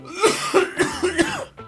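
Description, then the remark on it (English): A run of about five rapid, raspy coughs and throat-clearing hacks in quick succession, fairly loud, with a short gruff rumble trailing off at the end, from a person trying to clear something stuck in their throat. “I've got something in my throat, man. I cannot get it out.”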